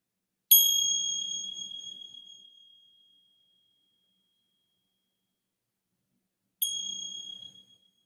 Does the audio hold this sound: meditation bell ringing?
yes